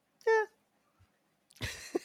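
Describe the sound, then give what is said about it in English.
A short, bright, tonal meow, probably a human voice imitating a cat, followed after a pause by a burst of breathy, noisy vocal sound like a cough or laugh. “Meow. Is that a cat? Meow.”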